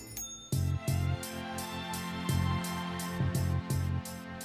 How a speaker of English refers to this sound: Synthesizers beneath an orchestra, with a chime and a bell as a cherry on top.